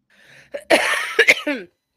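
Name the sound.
coughing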